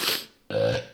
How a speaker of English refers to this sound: Oops, excuse me. And I burp. Burp.